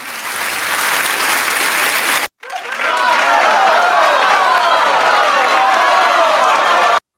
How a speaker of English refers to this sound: Let's get an applause going. Yeah. Just get an applause going for the lack of yelling. Let's go.